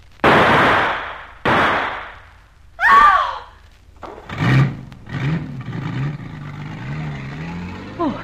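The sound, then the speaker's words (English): Two sharp, loud bangs open the scene, then a car engine roars into life and revs up and down in rising and falling surges as it pulls away, steady. “Rowley, in the back of the car! A man with a gun! Watch out!”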